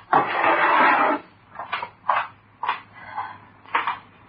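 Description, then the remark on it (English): A drawer slides open with a second-long scrape, then four short clunks and rattles follow as a hammer with a nail-pulling end is shifted and lifted out of the drawer, with no voices. “get me that hammer out of the drawer.”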